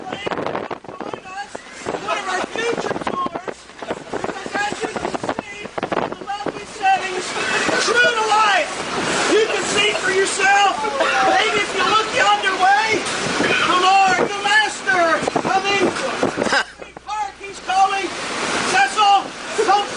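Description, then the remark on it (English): A stormy sea roars continuously: loud crashing waves and howling, whistling wind fill the whole stretch with a dense, turbulent wash of sound that briefly dips before surging again. “I just want you to kind of experience the sea, or the storm at sea out here.”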